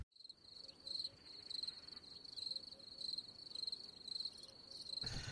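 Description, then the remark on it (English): A cricket chirps steadily, with high, shrill trills repeating in a regular rhythm about every half second over a faint background hiss. A short noisy bump cuts in at the very end. “Cricket.”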